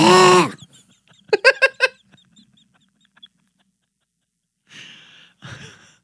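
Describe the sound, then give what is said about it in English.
A person imitates a Wookiee growl: a loud opening roar, a quick run of warbling yelps, then, after a pause, two softer raspy grunts, with no talking. “And now, how do you say that in Wookiee?”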